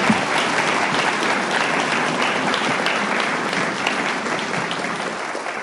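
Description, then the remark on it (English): Sustained audience applause at a group meeting for a speaker who has just finished his talk: a dense, steady wash of many hands clapping at an even loudness for several seconds, with no voices standing out. “All right, guys, one more round of applause for Rob.”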